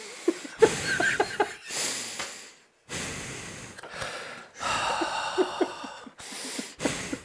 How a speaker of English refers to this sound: He doesn't look well, though, if I'm being honest, right? He's breathing heavy. He's breathing like James Gandolfini right now.